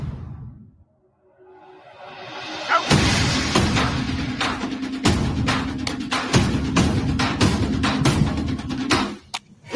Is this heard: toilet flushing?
no